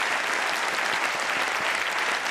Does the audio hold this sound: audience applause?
yes